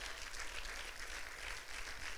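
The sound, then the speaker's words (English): A church audience claps steadily and densely as a hand of praise for Jesus, many hands blending into a continuous wash of applause that holds at an even level throughout, with no voices standing out. “Come on, give Jesus a hand of praise.”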